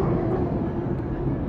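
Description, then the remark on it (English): A loud, steady roar from a hydroplane racing boat's engine, a type of boat that skims on the water's surface, thick with low rumble and a constant droning tone, with no pauses and no voices. “If that doesn't make you impressed with all that noise and all that engine power”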